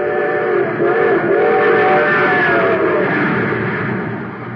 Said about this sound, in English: Yes, sir, that train's really traveling now because it's supercharged with super fuel.